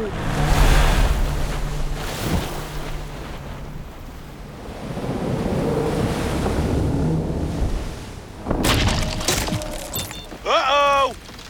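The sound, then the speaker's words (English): Ocean waves break and wash onto a beach in loud, rolling surges, then sharper splashing bursts and a brief warbling, whistling effect come near the end. “Back to the beach we go!”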